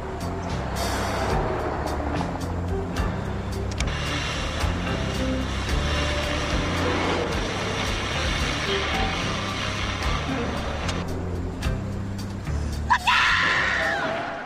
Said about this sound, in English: And that's when another big truck comes on the road and tries to run these guys off completely.